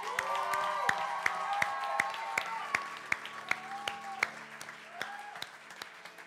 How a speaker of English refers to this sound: And for those of you in this room, and that's you, and you're the one that made that decision, we're clapping for you. And not just us, but heaven is celebrating with you.